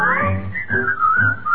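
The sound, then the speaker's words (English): A person whistles a bright, wavering tune in one continuous phrase, fairly loud, with soft low backing sounds underneath. “Whistle your blues and whistle your cares and whistle your troubles away.”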